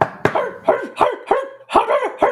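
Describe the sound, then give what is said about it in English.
Dogs bark in quick repeated bursts after a knock at a house door, about six sharp yaps in a row with a few overlapping, loud, with no talking. “Katie answers the door, finally stopping barking.”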